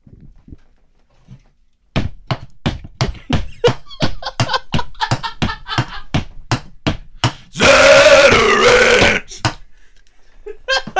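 Metal slammed repeatedly on the ground in a steady rhythmic beat, loud, followed by a burst of harsh gravelly vocal growling before the banging resumes briefly.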